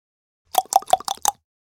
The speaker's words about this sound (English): Knock on door. Angry.